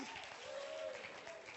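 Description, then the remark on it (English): A crowd claps together in praise of God, in a dense, steady wash of applause, with a faint sustained voice or tone drifting underneath. “Oh, clap your hands and praise him today.”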